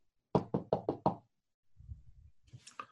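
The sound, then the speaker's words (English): Five firm, evenly spaced, loud knocks on a door, followed by a quiet pause, some low muffled shuffling and a brief higher scraping sound. “I've got a feeling he's not going to answer this door.”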